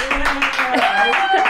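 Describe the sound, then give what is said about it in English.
A canned applause sound effect from a newly installed applause button pushed in a studio: a steady burst of crowd clapping mixed with cheering and whoops, fairly loud and sustained for about a second and a half. “We just got a new applause button installed in the studio.”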